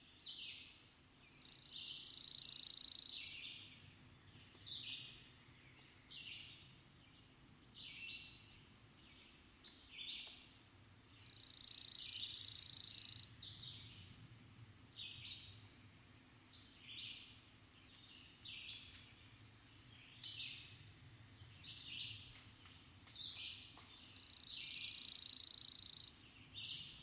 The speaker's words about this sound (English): In a dense undergrowth of spice brush, witch hazel, and alder, I meet the worm-eating warbler.